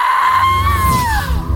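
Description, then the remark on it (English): A woman flips on a light switch and lets out one loud, sustained high-pitched scream. The pitch holds steady, rises briefly, then sags toward the end, with no talking. “I was halfway to her when Carla suddenly flipped on the light switch and screamed.”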